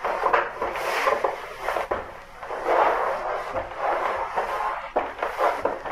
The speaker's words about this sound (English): I am waiting for the doors to give way. Do you hear them?